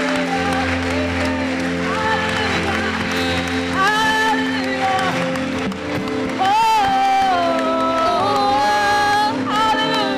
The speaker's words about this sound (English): Keep clapping for them. Come on. This is the most important part of this meeting. Come on. Clap for them. Clap for them.